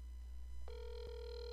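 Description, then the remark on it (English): An outgoing phone call to a guest rings, a steady electronic ringing tone cutting in partway through and holding to the end over a low line hum, with one brief click. “All right, he's gonna pick up, hopefully.”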